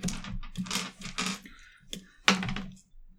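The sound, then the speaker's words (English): A six-sided die rolls across a hard tabletop, a run of quick rattling clatters ending in one sharp knock as it settles, landing on three. No one speaks. “Well, roll me a d6.”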